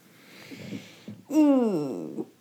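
A single drawn-out yawn, fairly loud, its voiced tone sliding downward for about a second. Soft breathy rustling comes just before it.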